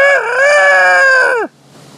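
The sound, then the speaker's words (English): A rooster lets out a single loud crow, a sustained harmonic call that holds steady and then drops sharply in pitch before cutting off into quiet. “And I'm like, was that a rooster?”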